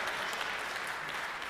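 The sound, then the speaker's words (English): A crowd applauds steadily, many hands clapping together in a dense, even wash of sound that holds at a constant level without any talking. “We do applaud that.”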